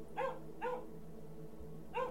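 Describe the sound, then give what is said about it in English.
A small Scottish terrier somewhere in the back of a house gives three short, sharp barks, two in quick succession and then one after a pause, over a low, steady background hum. “A small dog barked somewhere in the back of the house.”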